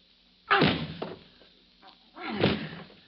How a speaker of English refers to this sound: Tonight's file continues in the closet of the hotel room occupied by Mr. and Mrs. Brooks. They've been battering at the door since Wilbur and Mrs. Wheeler left them there.